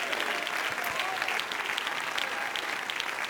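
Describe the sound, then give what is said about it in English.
An audience claps hands to the Lord in a dense, sustained burst of applause, a steady wash of overlapping claps from start to finish with a faint murmur beneath. “Clap your hands to the Lord tonight.”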